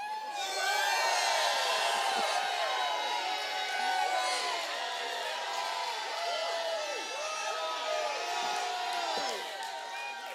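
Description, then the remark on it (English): A large church audience shouts and cheers continuously in worship, with overlapping whoops and voices rising and falling in a loud, sustained roar for several seconds. “If you have a shout in your heart, would you please let it out?”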